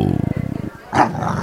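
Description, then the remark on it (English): Basil, a boxer dog, growls in a low, rumbling rattle for most of a second, then lets out one loud, sharp bark that trails off into a rough growl. “The late, great Basil the Boxer there, everybody.”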